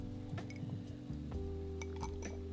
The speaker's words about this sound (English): Just pour the whole thing in there. No. The ice to liquid ratio is not going to make it cold faster.